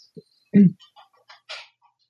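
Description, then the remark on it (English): A short, synthetic-sounding bird call from a light-triggered toy, set off when Christmas tree lights were turned off: a thin whistle, then a loud warbling chirp followed by a scattered string of quick, quieter tweets, heard clearly on its own with no talking. “I guess it's Bird O'Clock. Oh, is it one of those toys?”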